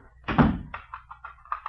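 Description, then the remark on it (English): An apartment door thuds shut, followed by a quick series of small metallic clicks and rattles as the lock is turned. No one speaks. “Why are you locking the door?”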